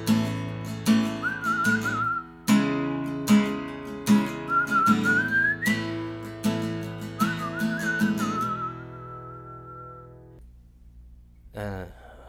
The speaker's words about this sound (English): I don't know where the whistling came from, but whatever.